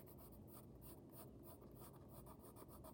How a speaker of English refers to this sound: Alright. So I'm just coloring.